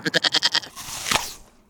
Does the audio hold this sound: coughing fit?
no